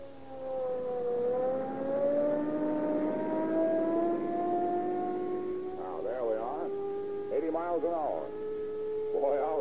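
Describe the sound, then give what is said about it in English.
A police car's engine, running on Rio Grande cracked gasoline, revs up from a 5 mph crawl and holds a loud, steady, continuous whine as the car speeds off to a burglary call, with voices breaking in briefly over it near the end. “We'll use every bit of power we can get out of that Rio Grande cracked gasoline.”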